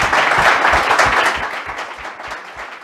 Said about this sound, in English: Yeah, I want to clap for that one. That is exactly right.